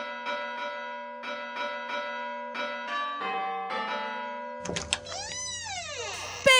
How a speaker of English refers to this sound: Come on, ring the doorbell.